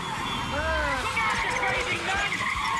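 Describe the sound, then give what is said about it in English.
A voice imitates an off-screen, dubbed (ADR) yell from a film scene of cars piling up at a crossroads: a drawn-out, short wavering cry rising and falling over a steady rush of noise, like screeching tyres and traffic. “The off-screen or ADR'd yell.”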